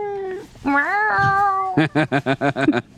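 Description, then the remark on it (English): A cat, Harry, meows loudly at the microphone after booping it, one long drawn-out wavering meow followed by a quick string of short, rhythmic chirping complaints, with no talking. “He came in and booped the microphone and now is just complaining.”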